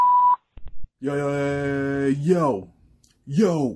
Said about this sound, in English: Please leave your name and phone number after the beep.